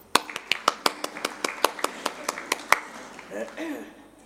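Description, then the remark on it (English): During a talk, one person claps their hands about sixteen times in a quick, steady rhythm, crisp, giving a clap to the New South Wales Nurses and Midwives Association, before the clapping stops and a voice starts talking. “And I'll give them a clap.”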